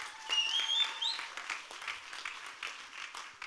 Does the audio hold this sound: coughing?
no